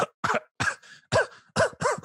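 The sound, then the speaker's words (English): A rapid series of about six short, harsh coughs, fairly loud, with brief gaps between bursts and no talking. “This is the one, the only, the gross coughing. It is coughing, my good man.”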